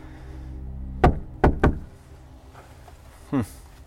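Three firm knocks on the front door of a house in snow, sharp, the last two in quicker succession, followed by quiet and a brief creak or shuffle near the end; no one answers.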